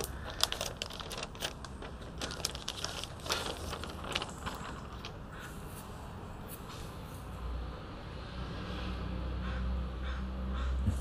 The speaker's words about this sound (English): I got Mylar on this, so it's like glaring. Hold on, let me take off the Mylar. Let's see if we can get a better look on it without the glare.